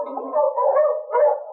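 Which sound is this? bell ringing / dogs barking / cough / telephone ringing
dogs barking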